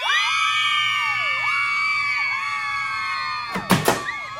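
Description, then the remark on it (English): A crowd of about 200 mini-skirted women screams and shrieks in a dense, continuous, high-pitched wall of overlapping voices while shoving past heavy Montrose security to glimpse the cast of Home Farm, interrupted near the end by a couple of sharp, loud bangs. “Shocking scenes today as a crowd of 200 mini-skirted lady rabble shoved their hairy gams past heavy Montrose security in a screeching effort to catch a glimpse of Ireland's latest media sensation, the cast of Home Farm.”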